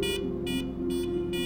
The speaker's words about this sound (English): What's that? Cat 1 alarm. We're under attack.